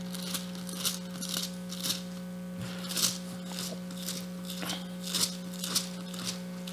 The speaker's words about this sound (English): This is what rustling of paper sounds like for you guys who use phones. It's a strange sound to you, but it's a very real sound.